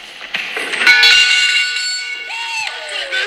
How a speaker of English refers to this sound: Look, another player has rung the bell. That means he did his personal best.